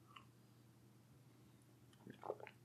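A quiet moment with a low background hum, then a single short, soft slurping sip of tea near the end; the tea is Pucker Joy, a blend of lemony herbs with a twist of orange, from an advent calendar.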